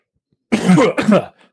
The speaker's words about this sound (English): The specter began to have a coughing fit and floated down to the ground, which actually appeared to be a very short man. The specter continued to cough